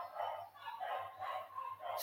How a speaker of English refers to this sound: Oh man, those dogs have got to go.